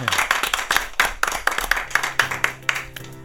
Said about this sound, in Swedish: En applåd!